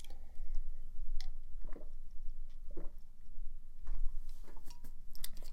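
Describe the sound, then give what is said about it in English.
Wet mouth sounds of someone sipping a drink and swallowing, with small clicks and squishy gulps scattered over a few seconds against a low background hum. No talking. “Let me take some drinks. Like, a sip of my drink to totally get this...”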